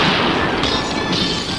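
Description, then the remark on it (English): A loud gunshot blast from a magnum smashes a big glass vase, followed by a steady, bright crash of shattering glass and tinkling debris that stays loud for over a second, with no voices. “You bust that glass all over him.”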